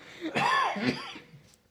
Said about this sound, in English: I still got a cough. I'm sorry, guys.